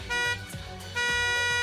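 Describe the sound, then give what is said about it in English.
A bus horn toots twice in quick succession, loud, each blast a steady harmonic honk with a brief gap between them. “The bus horn began to toot.”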